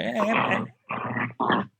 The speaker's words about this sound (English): Wait, was that the dog? Yeah, he's possessed. I told you. The dog has opinions. The dog has opinions about this.